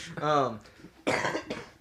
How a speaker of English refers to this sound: Pardon the cough.